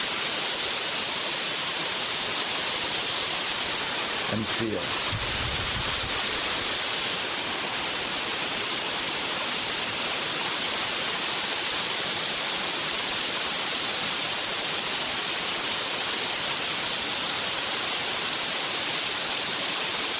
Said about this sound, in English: Now take a deep breath. Let's listen to this beautiful sound of the rain.